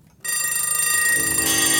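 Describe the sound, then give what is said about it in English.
A sudden, loud burst of many alarm clocks ringing at once, their bright metallic bells clattering together in a dense, continuous jangle that starts abruptly after a brief silence. “Out of nowhere comes this cacophonous, startling cluster of alarm clocks, which only works because that fade-out went on for so long that you were lulled into a sense of peace.”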